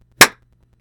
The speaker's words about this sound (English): I'm just gonna clap so that I have a place to cut between. Okay, cool. We'll clap.